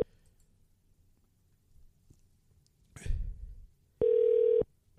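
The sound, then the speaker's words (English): A quiet line picks up with a soft click and rustle, followed by a loud, steady electronic dial tone that holds for about half a second before cutting off. “Can't believe I forgot to open up the phone line.”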